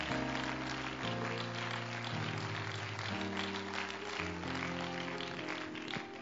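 A church audience claps steadily and continuously for several seconds to give praise, a dense wash of hand claps layered over sustained, shifting chords of organ-like music.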